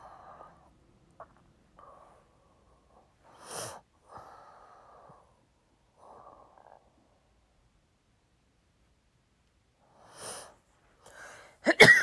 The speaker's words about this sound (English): Excuse me, I'm still trying to get over this little, and I still have this little cough